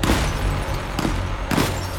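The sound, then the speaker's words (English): Gunshots ring out, three sharp bangs spaced unevenly over a steady, loud background roar, each one a sudden burst, as shooters fire at a man in a car outside a middle school, shattering the driver's side window. “They fire their first rounds, shattering the driver's side window.”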